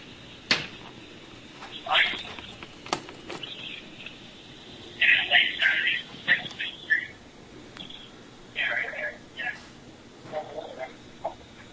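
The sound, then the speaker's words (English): A muffled, tinny phone recording from inside a pocket: scratchy fabric rustles and sharp clicks come in irregular bursts, with faint, indistinct voices murmuring underneath at low volume. “As you can hear, the phone is... Phone is in the person's pocket right now.”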